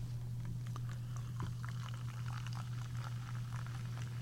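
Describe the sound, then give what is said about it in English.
Soda being poured into a glass, filled right up to the top: a steady, fizzy crackle of tiny pops and splashes lasting several seconds over a constant low hum, with no one talking. “You fill that right up to the top.”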